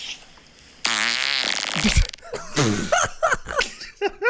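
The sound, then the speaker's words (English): A long, loud, raspy fart with a wavering pitch, recorded as a voice memo on an iPhone, plays back over a small speaker, followed by a few short bursts of laughter. “So I've been voice note recording on my iPhone all of my farts.”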